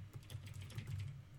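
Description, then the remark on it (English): Rapid, fairly soft typing on a clicky computer keyboard while someone looks something up, a steady patter of sharp keystrokes over a low hum, with no voices. “Yeah, you get to hear my clicky keyboard.”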